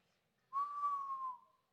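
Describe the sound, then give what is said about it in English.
A single sustained whistled note from a person, steady in pitch and fairly loud, lasting close to a second before tapering off, with no talking around it. “Well, that's the first time I've ever whistled.”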